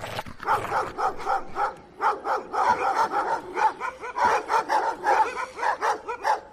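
Several dogs bark loudly and continuously, their rapid, overlapping barks and yips forming a frantic, nearly unbroken chorus, with no voices heard.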